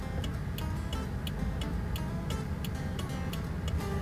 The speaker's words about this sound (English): Turn on my flashers, so hopefully the pickup truck behind me has a clue of what's going on. Okay, I can turn off my flashers.